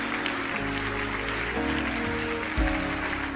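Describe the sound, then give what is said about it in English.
A church audience claps steadily in a dense, continuous patter, with sustained keyboard chords held underneath and shifting a couple of times. “Oh, keep clapping your hands.”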